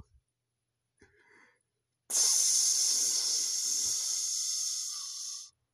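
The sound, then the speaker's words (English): A loud, steady sizzling hiss bursts in after a couple of faint clicks and holds for about three and a half seconds, bright and airy like frying or escaping steam, before cutting off. “You hear the sound of that? That's the start of the sizzling hot 2023 NBA playoffs.”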